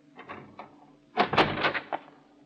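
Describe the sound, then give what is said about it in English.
The door of a shack is opened with a handful of distinct clicks and clunks, followed by a louder burst of creaking and rattling as it swings open, then a final knock. “If the door's unlocked, flash your light inside the minute I open it.”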